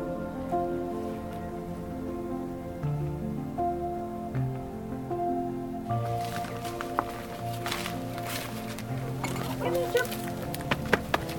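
Hens cluck and murmur in a steady stream as they dash toward vegetable patches, with scratchy rustling and light pattering as they move about, growing busier and more scuffling in the second half.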